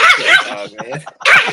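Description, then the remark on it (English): A dog barks loudly in short harsh bursts, with a whining, whimpering tone in the brief pause before another sharp bark. “You see, petting the dog is one of the most relaxing things you can possibly do.”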